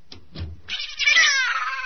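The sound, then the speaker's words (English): A cat lets out a long, drawn-out meow, high and wavering, that swells and holds for over a second. Two brief, muffled thumps come just before it. “Nice, Kitty. Hush.”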